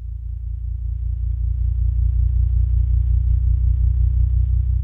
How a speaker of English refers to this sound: We're hearing gravitational waves, the ripples in space-time made by the tremendous mass of colliding black holes. We can hear them because their wavelengths have been shifted all the way into the human range of hearing by MIT professor Scott Hughes.